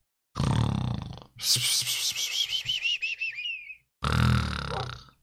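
A voice imitates snoring: a loud rasping snore, then a wavering whistled exhale, then another throaty snort as if jolting awake, all exaggerated.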